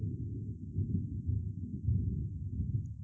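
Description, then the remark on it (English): A deep, sustained rumble of thunder from a storm rolls on for about three seconds, low and heavy with a slightly uneven swell, and no voices over it. “We got storms.”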